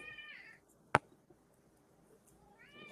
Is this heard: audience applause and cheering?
no